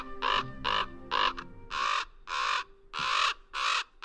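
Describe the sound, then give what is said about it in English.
Common ravens call and squabble from the branches of scraggly pines: harsh, hoarse croaks repeat in a rapid series of about eight loud calls, clear, with a low rumble beneath the first few and no talking. “Common ravens call and squabble from the branches of scraggly pines.”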